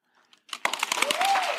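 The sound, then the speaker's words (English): Hands clap rapidly and densely, several people at once, building from a few faint taps into loud, continuous applause, with a brief rising vocal whoop near the end. “So let's demonstrate hand clapping again.”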